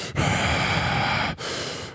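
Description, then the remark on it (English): Exaggerated heavy breathing, very loud: one long, rough, huffing breath followed by a shorter second one after a brief pause, with no talking. “You start breathing heavy.”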